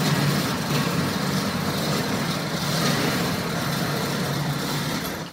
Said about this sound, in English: Front shutter, back shutter, goes down. I am in the car wash and I am locked inside.